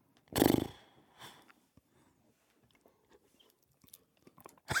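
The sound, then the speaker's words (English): A loud sip of a drink, one quick slurp near the start, followed by quiet swallowing clicks and small mouth noises. Nobody speaks. “I had to take a sip, man.”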